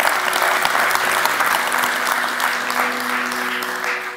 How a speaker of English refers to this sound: Yeah, you can clap for that. You can clap for that.